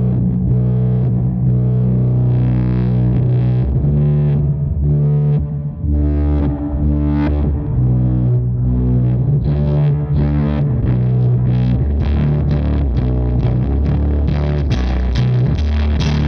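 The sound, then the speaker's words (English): A distorted electric guitar played through a Pog octave pedal, its filter sweeping upward so the tone brightens and builds over sustained, loud chords and notes, with no talking. “So Rains is the Pog, and I'm going through like the filter sweep on it, so it's like.”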